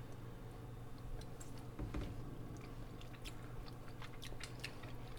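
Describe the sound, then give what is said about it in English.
Someone chewing a bite of plum pudding taken from the pan it was cooked in: soft, moist mouth clicks and squishes in an irregular rhythm over a low, steady background hum, with no talking. “Shall we have a nibble of a little bit”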